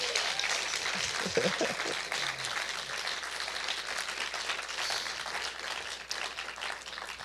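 An audience applauds steadily for several seconds, a dense, even wash of clapping with a brief vocal whoop near the start, no one speaking over it.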